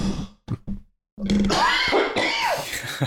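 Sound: coughing fit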